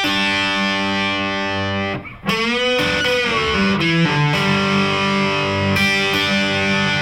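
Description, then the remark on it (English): Heavily distorted electric guitar notes, played at the 3rd fret of the first and second strings and left ringing together, ring out thick and buzzing, briefly cutting off around two seconds before another sustained, grinding chord swells back in loud and dense with overtones. “So we'll have all that stuff kind of ringing and grinding. It's a big sound.”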